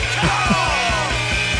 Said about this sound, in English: I'm going to play a little song. See if you can remember this. Ready?